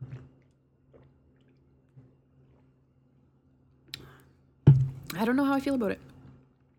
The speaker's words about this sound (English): I'm drinking a Mott's Clamato Caesar with bacon flavored vodka. And let me try another sip. I don't know how I feel about it.